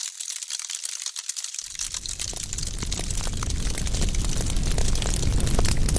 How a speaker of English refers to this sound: A fireplace is always pleasant. This log with cooling embers provides a wonderful backdrop.